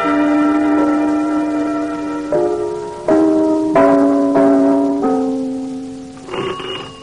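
A doorbell chimes a slow tune of about six ringing, sustained bell notes at shifting pitches, each blending into the next, fairly loud with no voices.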